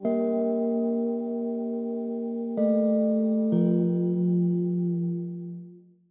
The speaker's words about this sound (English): it sounded like a tolling bell. A tolling bell for whom the bell tolls.